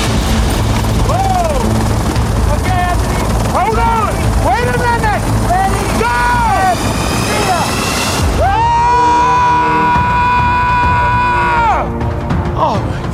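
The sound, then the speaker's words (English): A helicopter carrying skydivers about to jump over mountain peaks roars loudly and steadily from start to finish, with dense engine and rotor noise, voices and shifting tonal whines rising over it, and a sustained hum near the end. “There is nothing like jumping out of a helicopter.”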